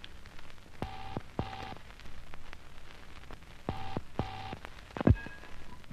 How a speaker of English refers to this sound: I'd dialed Paquita Riffio's number. It was ringing.